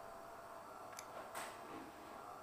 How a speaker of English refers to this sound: sorry, it's my coffee machine. I thought it had finished, and it hasn't, but there you go.